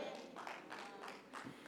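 A handful of scattered hand claps, soft and irregularly spaced, about five sharp slaps spread over under two seconds with no voices over them.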